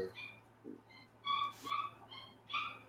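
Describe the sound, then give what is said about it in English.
A dog lets out a series of short, high-pitched whines and yips, about four or five bursts in quick succession, fairly quiet against a steady low background hum. “your dog. Get him some water or something.”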